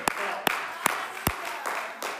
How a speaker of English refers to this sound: Somebody clap your hands to Jesus. Hallelujah. Hallelujah.